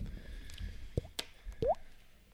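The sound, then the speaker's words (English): Quiet, wet gulping as a person swallows water held in the mouth: two short liquid plops about a second apart, with a faint click between them and no talking. “Oh, you swallowed the water.”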